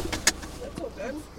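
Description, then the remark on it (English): A few quick clunks and rattles, like a vehicle door and people climbing into a truck, followed by a low engine rumble and faint mechanical whirring as the truck heads out to see orchards. “So rather than chat in the office, we jump straight into his truck and head out to see some orchards.”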